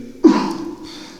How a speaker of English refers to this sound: This man coughing and shit in the background. It's live, people.